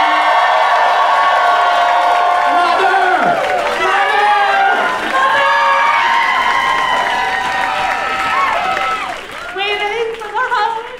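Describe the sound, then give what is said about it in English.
A studio audience cheers and applauds loudly and steadily for guest Alison Roman, with many overlapping voices whooping and shouting over dense clapping for the full eleven seconds, easing slightly near the end. “Give it up for Alison Roman.”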